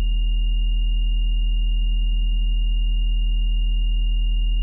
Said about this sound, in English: 40 hertz difference. So it sounds like this. It sounds like crickets, right? So I've got my nice 40 hertz binaural that you can hear sounding like a cricket, and I wanted to put that over my 40 hertz fundamental tone.